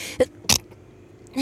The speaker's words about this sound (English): That was the weirdest sneeze I ever heard. Yeah. I always hold my sneezes in. But it didn't sound like that. It sounded like you sprayed a Kleenex bottle, like a Windex bottle.